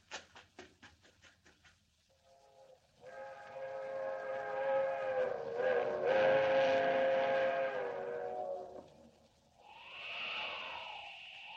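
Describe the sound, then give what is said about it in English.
A fast-traveling train: a rapid clatter opens, then a loud, sustained steam-style train whistle blares for several seconds, wavering slightly, before a shorter, higher whistle sounds near the end. “There's the train. Traveling fast, all right.”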